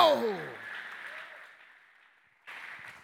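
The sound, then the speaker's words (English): A crowd applauds steadily, the clapping fading to a soft patter before a fresh burst of clapping swells up again. A raised voice briefly cuts through at the very start. “anybody clapping your hand, and embracing what God has done. You're clapping, and sick in the building, come on, go!”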